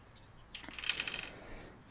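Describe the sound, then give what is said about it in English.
Dice clatter and tumble across a table, a quick flurry of sharp clicks that settles after about a second; fairly quiet, with no voices. The dice are rolled for a constitution saving throw. “Oh, let me get my dice. I was not expecting to roll yet.”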